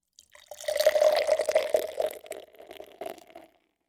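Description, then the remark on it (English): Dark stout beer glugs steadily into a glass for about three seconds, a gurgling pour with a rising hollow tone that tapers off near the end. No one speaks. “All right, let's get with the pour. Let's look at this beer.”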